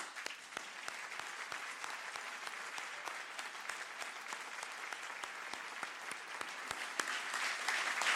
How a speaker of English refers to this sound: So actually, can we just give Brian a round of applause?